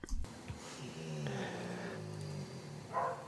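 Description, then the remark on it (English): A dog gives a low, rumbling grumble, a soft drawn-out growl lasting a couple of seconds, fairly quiet, with no talking over it. “Did Marla just growl? Yes, yeah, it was more of a grumble”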